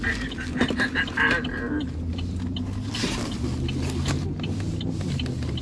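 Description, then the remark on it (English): Car brakes squeak in a quick series of short, high-pitched squeals over a steady low engine and road rumble, which carries on after the squeaking stops. “And they can hear our horrible breaks.”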